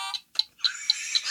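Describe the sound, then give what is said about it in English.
A game buzzer sounds as its button is hit repeatedly while players name movies, a quick series of sharp, high electronic bursts, stopping briefly and then pulsing again in a steady rhythm, loud with no talking. “This buzzer is a burning.”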